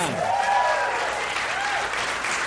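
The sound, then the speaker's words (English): A crowd breaks into steady applause, a dense wash of clapping that holds at an even loudness for the whole stretch, with a few whoops and cheers rising briefly above it. “Round of applause for annoyance.”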